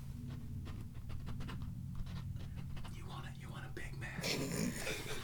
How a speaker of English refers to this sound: They can't like, hear the pen on paper.